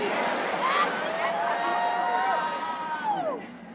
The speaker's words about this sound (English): The shouts are getting weaker.